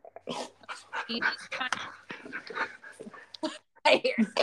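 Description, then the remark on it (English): Dogs pant and whimper in quick, breathy bursts that come and go, mixed in with a person talking over them. “Sorry, they're panting.”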